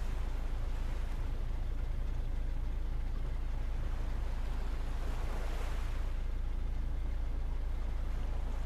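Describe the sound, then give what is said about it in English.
Water laps gently and steadily against a boat hull, a continuous low wash with a gentle swell rising and fading midway, fairly quiet, with a faint rumble of wind underneath and no voices. “The waves lapped gently against the hull of the boat.”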